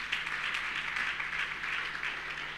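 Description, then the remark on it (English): A crowd at a sermon claps for Jesus in steady, sustained applause, a dense patter of many claps blending into one continuous wash of sound, with no voices over it. “Clap your hand for Jesus.”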